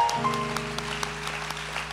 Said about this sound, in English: In fact, if you have been blessed at all by the ministry of Brother Mark's, I want us to praise God right now with a hand clap of appreciation.